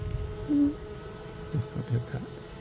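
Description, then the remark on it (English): A low, steady drone of many honeybees buzzing at a hive, with many bees on top and bees fanning at the front, fairly quiet, broken by a few brief soft thumps. “while I was up on end, the queen could have gone out, but I think because there's so many bees on top still, I think she's in there.”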